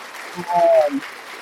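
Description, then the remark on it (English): A short burst of audience applause, a dense wash of clapping that swells briefly and then thins out, with a voice briefly sounding over it. “So let me give him a round of applause to save the next people.”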